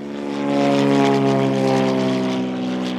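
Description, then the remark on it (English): A propeller plane, Greg Malloy's seafloor-mapping aircraft that scans coastline, drones steadily, its engine giving a loud, buzzing hum with layered tones that swells slightly and holds for about three seconds, with no voices. “Even Greg Malloy's aircraft has limits. It can scan hundreds of miles of coastline in a single pass, but if the water is too deep or too cloudy, it can't sense and map the seafloor.”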